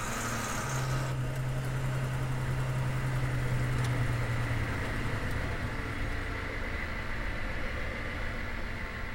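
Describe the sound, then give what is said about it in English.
A vehicle engine idles with a steady, low rumbling drone and a faint hum, holding an even level throughout with no voices. “Kill the engine.”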